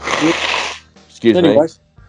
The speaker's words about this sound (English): I'm on an international podcast blowing my nose. Yeah, you sound like a horse winning, you know? Nay. You think I sound like a horse?